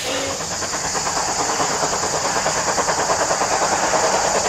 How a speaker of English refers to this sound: I probably love the sound it makes through the valley. So I live in the Merry Valley and I'm lucky to live on the line, and even when I'm not at work I get to smell and hear the steam train.